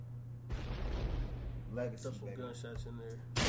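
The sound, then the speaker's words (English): A loud burst of gunshot sound effects erupts and rings out for about a second, followed by a voice talking over a steady low hum, then another sharp blast right at the end. “Yeah, throw some gunshots in there.”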